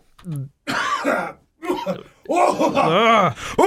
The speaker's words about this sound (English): Okay, sorry. Goddamn. Sorry, I'm coughing the evil out right now.